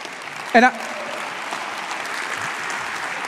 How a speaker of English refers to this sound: That is the worst golf clap you could ever give.